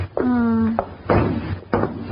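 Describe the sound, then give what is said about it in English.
A few hollow knocks on a wooden lifeboat, spaced unevenly, each with a short resonant ring, following a brief steady humming tone. “What are you knocking on that lifeboat for, miss?”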